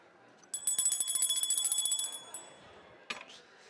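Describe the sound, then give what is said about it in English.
A bright, high-pitched hand bell is rung to end a service, a rapid flurry of strokes for about two seconds, its tone lingering as it fades, followed by one short, isolated ding. “Have to resort to the bell.”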